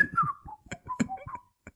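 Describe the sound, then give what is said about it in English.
A short burst of whistling carries a quick, bouncy melody, the notes sliding up and down over about two seconds, moderately loud with some breathy clicks mixed in. “I would have loved a scene of just Kellen Mulvey and he's just pouring petrol on bodies and he's just whistling while he works.”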